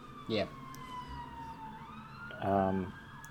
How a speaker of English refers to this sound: And then the ambulance came. Yeah, Jesus Christ, this What loud ass ambulance.